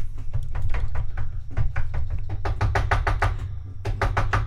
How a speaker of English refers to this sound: Usually when somebody knocks, it opens.